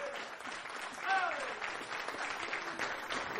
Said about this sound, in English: Let's give the Lord a hand clap of praise in His house.